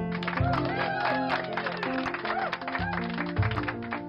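A crowd claps steadily, the dense rattle of hands continuing for about four seconds at a fairly loud level, with tonal music playing underneath.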